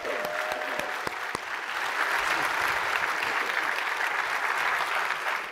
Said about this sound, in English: Yeah, I feel pretty cool about that, yo. Let's clap for that.